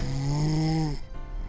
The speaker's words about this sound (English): Just then, Barney turned over and snored like thunder, so loudly it shook the walls.